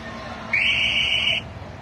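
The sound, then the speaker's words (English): A fire truck arriving at a scene where people are trying to get a raccoon down sounds a single shrill, steady high-pitched siren blast lasting under a second, loud, over a low background hum. “Now here comes the fire truck.”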